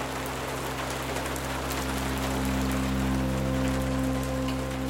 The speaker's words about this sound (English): I'm hooked on those 10-hour-long YouTube compilations of rain sounds.